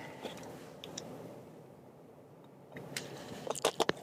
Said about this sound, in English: Sip of water.